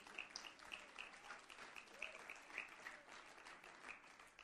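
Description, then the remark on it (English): An audience claps their hands together in steady, dense applause throughout, with a few brighter, sharper claps popping out above the continuous patter. “Clap your hands for that.”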